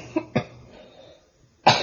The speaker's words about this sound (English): Uh-oh. Coughs.